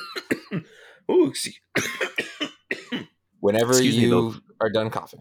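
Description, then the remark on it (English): A man coughs in a rapid series of harsh bursts, followed by a strained, voiced throat-clearing sound, then a few more short coughs. “Whenever I'm done coughing, we'll have that conversation at a later date.”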